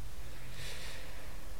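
A single drawn-out nasal sniff from a constantly stuffy nose, breathy, with a congested, wet quality, rising and fading over about a second; no talking.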